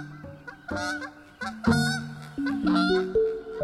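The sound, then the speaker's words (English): Repeated loud honks from a wild goose at dusk, heading east, a series of nasal calls in uneven rhythm with some overlapping, no talking. “At dusk, a wild goose heading east.”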